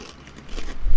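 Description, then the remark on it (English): A crisp crunch as a very thin-cut, truffle-flavoured baked snack is bitten into, the crackling building toward a louder snap near the end, with no talking over it. “Going for the munch?”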